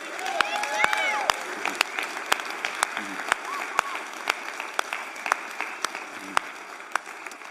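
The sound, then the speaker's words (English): A church audience applauds for Jesus with dense, steady clapping that holds at a fairly even level throughout, sharper individual claps standing out and a few voices calling out over the crowd. “Let's give one big round of applause to Jesus on this day.”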